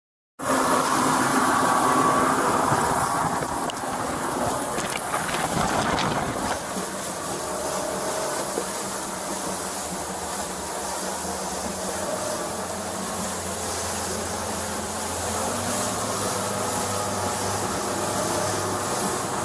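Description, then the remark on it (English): A speeding runaway motorboat going about 41 miles per hour on a curved path roars steadily, its engine drone blending with a constant rush of wind and water spray for the whole stretch, with no voices. “the boat was going about 41 miles per hour on a curved path, and Deputy Constant matched its speed”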